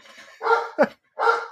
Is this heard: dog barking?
yes